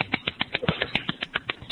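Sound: applause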